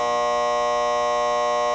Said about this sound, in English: So that buzzer means that we are out of time for segment number 1.